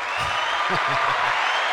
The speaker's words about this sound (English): Applause.